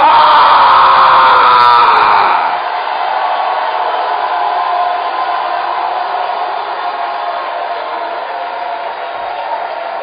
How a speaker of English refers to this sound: Now lift up your voices and shout unto the God with the voice of triumph.